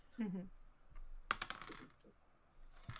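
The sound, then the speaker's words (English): A brief rattling clatter of three dice rolled onto a surface in quick succession for a dexterity check in a tabletop game, preceded by a short murmured voice and faint background noise. “Okay, so I am now going to roll quickly for the dexterity for Ill to get the Velithi in the pod.”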